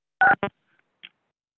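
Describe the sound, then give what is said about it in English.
Two quick telephone keypad tones, like star then six being pressed to unmute a caller's phone during a City Planning Commission meeting, sound in rapid succession, followed by a faint short blip and silence. No one speaks. “You can press *6 to unmute your phone and address the planning commission.”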